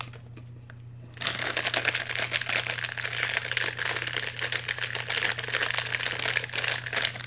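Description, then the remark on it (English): Cellophane is crumpled to imitate a crackling fire, making a dense, continuous crisp crackle that starts after a brief quiet moment and runs steadily over a faint low hum. “The crisp crackle of faux flames, the way they made them in the days of radio dramas, back in the 1930s and 40s, when he was a boy.”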